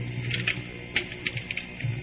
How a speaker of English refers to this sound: Sorry, I'm trying to delete something. This keyboard's backspace doesn't work.